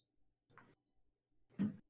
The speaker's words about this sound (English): It's not letting me. Viewers. I'm trying. Clicking it like 8 times.